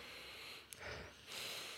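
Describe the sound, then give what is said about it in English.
Several quick, airy sniffs follow one another, each a short breathy rush of air through the nose as someone repeatedly sniffs an object that smells of nothing, with no talking. “Just me and like sniffing something that doesn't even smell, just and repeatedly so.”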